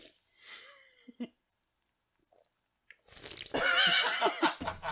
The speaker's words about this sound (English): You can't get away with it by slurping things very loudly